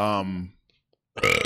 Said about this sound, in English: My first rounder, burps. I'm drafting burps.